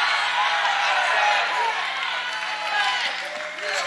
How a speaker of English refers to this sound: You say, why are these people shouting? Because they're paying the price.